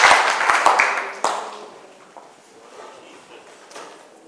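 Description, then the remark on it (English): A church audience claps for Jesus in a dense, loud burst of applause that quickly thins out and fades to a soft, scattered patter within a couple of seconds. “Why don't you clap for Jesus? Clap for Jesus properly.”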